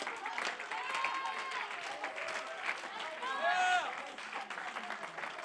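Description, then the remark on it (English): A large group claps steadily and continuously to give God glory, a dense, fairly loud wash of hands with scattered voices and whoops rising through it. “Oh, I wish we could just clap our hands one more time and give God some glory.”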